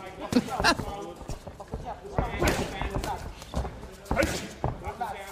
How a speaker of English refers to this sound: Boxing matches have no audiences because of COVID-19. And since there's no crowd... You can really hear how loud the punches are landing on the boxers' bodies. Like, those aren't punching bags.